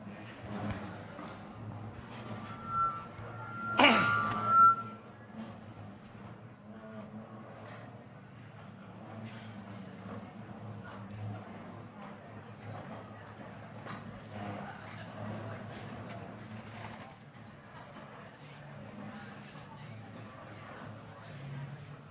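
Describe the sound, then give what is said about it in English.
Chairs scrape and shuffle across the floor as people get up and move their chairs into a shape, amid a steady rumble of movement, with one loud, squealing drag early on and softer bumps and scuffs continuing throughout. “So lots of noise, lots of moving chairs.”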